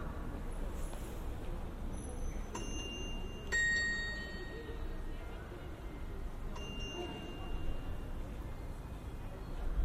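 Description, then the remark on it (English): Church bells in Riga, Latvia, chime through cobblestone squares in a few separate strikes, each ringing tone lingering and fading, over a steady low rumble of street traffic. “Church bells chime through cobblestone squares.”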